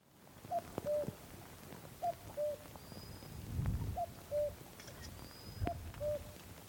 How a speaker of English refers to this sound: Go on, do it again. There's a cuckoo on a little peak on a crag across Loch Coigach.